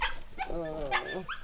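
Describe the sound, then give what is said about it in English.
A few high, wavering whimpers and yips from puppies in a basket, one drawn-out whine in the middle followed by shorter squeaky cries. “I've got some puppies in a basket, look.”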